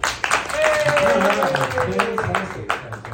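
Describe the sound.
A crowd claps steadily for about three seconds, a dense patter of hands with voices cheering and calling out underneath, ending in a few last scattered claps.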